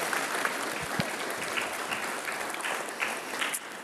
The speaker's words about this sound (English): You like the applause. Let's do that again. Ready? You want some applause? There we go. There you go.